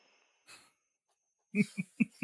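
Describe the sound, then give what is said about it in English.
Heavy breathing right up against a microphone: one soft breath, a pause, then four quick, loud, wheezy puffs in a rapid rhythm, with no talking. “You hear me breathing onto this mic.”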